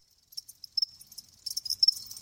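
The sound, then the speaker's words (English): Crickets chirp in Havana in rapid, pulsing bursts, a high thin trill that repeats several times and grows denser toward the end, with a faint low rumble underneath. “So I think one of the important takeaways is that, yeah, the individuals who were living in Havana heard crickets.”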